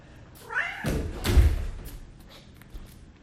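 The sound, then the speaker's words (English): A cat gives a short rising meow, followed by a couple of soft, heavy thuds, like cats jumping down or moving about the room, then quiet rustling; two cats are present. “Uh-oh, we're about to have a two-cat situation up in here.”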